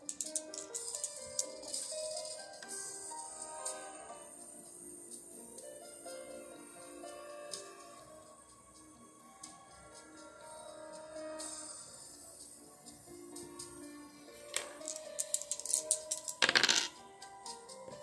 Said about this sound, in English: Let's go ahead and roll the dice and find out what is under the surface.